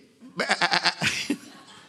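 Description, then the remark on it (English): A voice imitates a sheep bleating: one loud, quavering baa that wobbles in rapid pulses for about a second, then trails off with a short final bleat. “Could you imagine? We're the Georgia sheep.”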